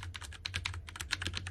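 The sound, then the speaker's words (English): Rapid typing on a Cherry mechanical keyboard with Cherry MX Red linear switches, a steady stream of fairly loud key clacks with a low hum underneath and no talking. “Well, what I use currently, I use a Cherry keyboard with Cherry red MX switches on it.”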